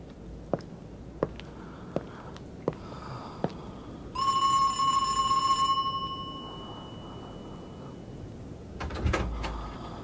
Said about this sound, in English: This is your house. Look, number 93. All right, you stay here by the gate and I'll go and knock on the door.